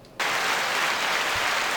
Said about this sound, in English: Everybody's getting positive applause this week. Good. Everybody? We deserve it.